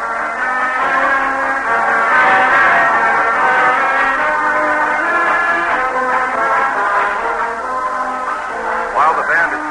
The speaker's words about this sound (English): There's the Wolverine band. Let's pick them up for a minute.